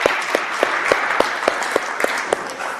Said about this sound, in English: Good job. I think we should give him a round of applause for that.